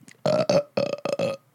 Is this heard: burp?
yes